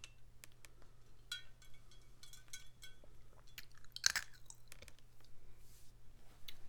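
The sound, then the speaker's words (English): Someone quietly sips a drink from a cup, with soft wet mouth clicks and swallowing sounds and one sharper clink midway, with no talking. “Put your cup down. I'm going to throw it across this room.”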